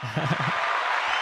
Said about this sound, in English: Yeah, you know, we're going to give you one more round of applause because it wasn't loud enough. Let's go.